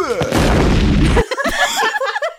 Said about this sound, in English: And then the van explodes with the power of 1,000 suns.